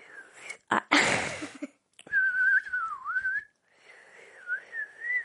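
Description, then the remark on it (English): A child whistles in two wavering phrases with a gliding, slightly warbling pitch, after a short breathy rush of air; no one speaks. “I can also whistle.”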